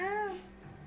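A single short meow, fairly clear, with a rising-then-falling pitch, likely a person imitating a cat's voice, followed by quiet background hum.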